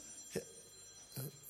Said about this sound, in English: That's not me, is it? I hope not. I hope it's not my phone ringing. If it's your phone, you've got to put it off.